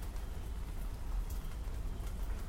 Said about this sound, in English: Doesn't it sound like it's raining? It's weird. Maybe it's just all drips. Drips and drabs.